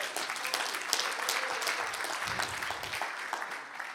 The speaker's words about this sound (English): Well done. Round of applause, please, for...